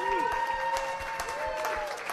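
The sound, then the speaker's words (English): A show audience applauds to welcome the next guest, a dense, steady patter of many hands clapping at a sustained loud level, with a thin whistling tone sliding underneath. “And while you're clapping, keep it going for our next guest from Hamilton, Ontario”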